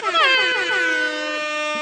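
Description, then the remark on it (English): A loud, brassy air horn blast with a wavering, slightly bending pitch at the start, then holding steady for nearly two seconds, alone with no talking. “Air horns.”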